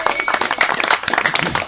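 A round of applause: many hands clapping in a dense, steady patter that holds at an even loudness for the whole stretch, with no voices standing out above it.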